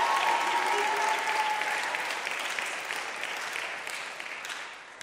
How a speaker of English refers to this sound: I think wild, crazy applause. No, better than that. I want wild, crazy applause for these leaders right here. Why don't you give me? There you go. That's what I'm talking about.